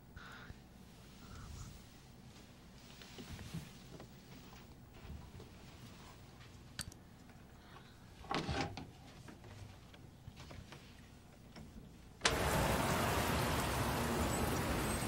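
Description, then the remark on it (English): Light rain in a film scene, shot against a green screen, patters steadily with a few soft knocks and thumps, then a sudden loud, dense downpour rushes in and fills the last few seconds. “Oh my god, look at the rain green screen on that.”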